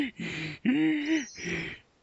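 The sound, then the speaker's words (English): A person imitates a hot dog heaving its breaths in after it stops bouncing: three rough, airy pulls in quick succession, the middle one groaning with voice, ending in a fading exhale. “And then when it stops, if it hasn't been cut up by the fan, it'll kind of heave its breaths in.”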